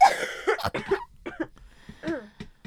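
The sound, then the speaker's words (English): A person coughs several times in quick succession, fairly loud, followed by softer throaty, voiced sounds and a few faint clicks. “I keep coughing.”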